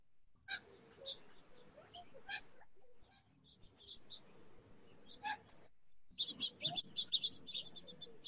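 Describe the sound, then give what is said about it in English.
Birds chirp in short, high bursts with brief pauses, ending in a quicker run of twittering calls, over a soft low background rumble, and no one speaks. “I hear some birds.”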